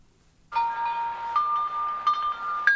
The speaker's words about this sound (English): Yeah, they hang down. What are they called, though? Wind chimes. That's what they are.